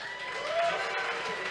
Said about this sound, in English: I want to ask the audience, before the debate starts, among the people who are going to be on stage, can I get a round of applause? Who supports DeSantis?